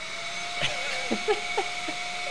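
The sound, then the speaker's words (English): A vacuum cleaner runs steadily, a constant whooshing roar with a high motor whine, broken only by a few faint knocks and bumps. “If you had a vacuum on and I had a vacuum on, and then we were talking on the phone to each other with the vacuum on?”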